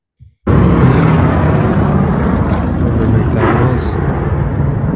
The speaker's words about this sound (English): Where was this at? Dallas. They're doing like a big air show with like the Blue Angels and shit, and like old World War II planes.